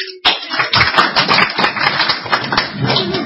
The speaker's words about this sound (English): Small clap.